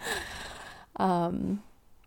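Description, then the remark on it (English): A dog cuddled up to the person recording, with its arms around them, breathes right against the microphone: a long, airy exhale followed by a short voiced, sighing breath, fairly loud, with no one talking. “He literally has his arms around me, so you can hear him breathing”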